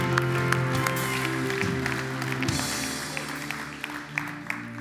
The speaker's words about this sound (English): Come on, let's give God a clap and thank him for what he's doing.